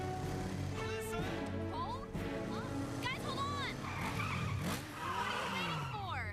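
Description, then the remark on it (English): Savage Cycles motorcycles rev loudly and continuously while tires squeal in rising and falling skids as the bikes tear off, with voices faintly mixed into the busy roar. “Fortunately, they all know how to ride motorcycles.”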